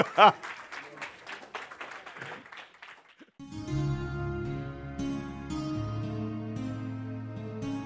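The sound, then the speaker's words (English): A crowd claps hands in dense, lively applause for about three seconds as a hand clap of praise to the Lord at the end of a church teaching, then the clapping gives way to sustained organ-like music that carries on to the end. “Come on and give the Lord a hand clap of praise.”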